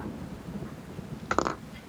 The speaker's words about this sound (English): So, you all step out into the rain.